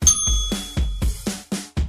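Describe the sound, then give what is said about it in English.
A hand bell is rung in a quick, steady series of about seven sharp strikes, each with a bright metallic ring that briefly sustains before the next hit. No voices. “Every time something registers in her brain, she rings the bell.”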